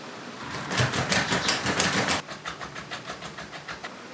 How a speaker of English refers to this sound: They could not hear me fiddling with the door.